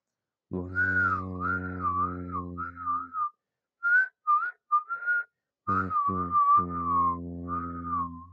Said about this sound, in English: I finally figured out how to whistle again. It's really weird.